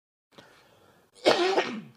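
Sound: cough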